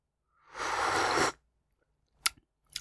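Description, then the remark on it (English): A noisy slurping sip from a durian drink lasts about a second, followed after a pause by a couple of brief wet mouth clicks. No one speaks. “I'm going to take a sip of it.”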